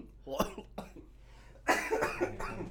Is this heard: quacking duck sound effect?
no